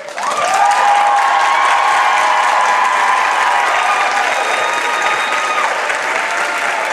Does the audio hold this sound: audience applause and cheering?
yes